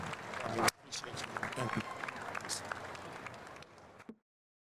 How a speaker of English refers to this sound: All right, God bless you guys. Round of applause, yo!